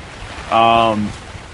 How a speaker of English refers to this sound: Everything's moving and shaking, and the rain is moving horizontal. Problem two is the rain. It's very wet out.